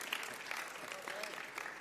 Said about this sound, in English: How many of those people have been here 25 years or more? Hands up. Yeah? You should be clapping, huh?